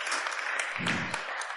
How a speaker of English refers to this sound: Can we give him a round of applause and some love? Thanks, man.